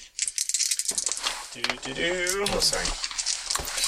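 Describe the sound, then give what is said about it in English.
Dice rattle in a quick, clicking shake lasting about a second for an initiative roll, and the clatter continues faintly as a person begins talking over it. “Okay, I'll use these dice.”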